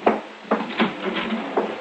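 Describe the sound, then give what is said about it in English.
A front door being opened for fresh air on a warm evening, with a handful of short wooden clunks and rattles from the latch and frame spread over a couple of seconds, no voices. “You mind opening the front door”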